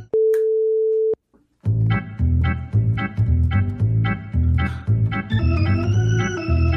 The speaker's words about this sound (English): Pause the audio at the beep, and the next time you wash your hands, you're ready to go with another episode.